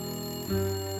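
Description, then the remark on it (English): A phone rings with a steady, buzzing electronic tone that shifts pitch partway through, a single brief burst with no voices. “She was thinking about bending over to pick up the toast on the floor when her phone rang.”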